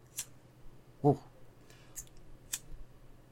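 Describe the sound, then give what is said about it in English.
A birthday lighter clicks repeatedly without catching, four sharp snaps spaced unevenly over a few seconds against a quiet low hum. “Okay, I'm hearing a lot of clicking up there. Is that the Yeah, it's the lighter.”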